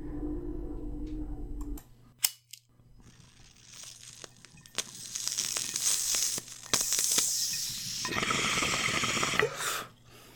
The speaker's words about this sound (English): You know, there's a very low flying copter. I don't know if they're spraying in the fields or if they're looking for somebody. Maybe we'll let them fly overhead.